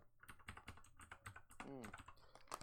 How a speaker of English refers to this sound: Oh, yeah, I'm typing really slowly because I have food on my hand.